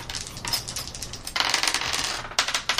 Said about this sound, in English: Snake eyes. Roll two dice.